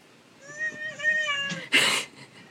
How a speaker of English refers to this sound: Cat noises. Sure did. Meow. Just meow.